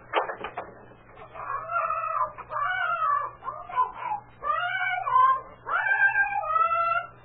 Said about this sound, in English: It's a parrot. Yeah, it's a parrot. I remember now that Francis girl said Mrs. Benton put the bird out here because it got on the old man's nerves.